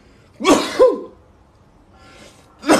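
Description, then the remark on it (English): A loud sneeze, caused by cayenne pepper, bursts out in two sharp parts, then after a short quiet pause with a faint breath, another sudden explosive burst begins right at the end. “Sorry, y'all, I have cayenne pepper in here. And it makes me sneeze.”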